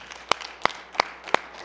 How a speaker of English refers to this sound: Let's give him one more hand clap, if you wouldn't mind, please.